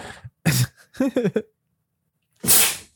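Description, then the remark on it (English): A person's loud sneeze: a sharp breathy burst, then some short voiced sounds and a pause before a second forceful, hissy explosion of air. “I'm gonna sneeze. I feel it coming.”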